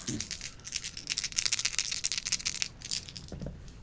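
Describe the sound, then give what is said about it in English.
Dice rattle and clatter across a table that is not flat in a quick, dense burst of sharp clicks for about three seconds, then settle, with a faint murmur of voices at the start and end. “Do you want to use different dice?”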